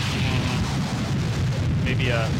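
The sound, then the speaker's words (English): Harsh noise music made with feedback, a contact mic and death metal distortion pedals: a loud, unbroken wall of distorted, crackling static over a churning low rumble, with a brief squealing feedback whine rising near the end. “Some feedback, some contact mic. It's harsh noise.”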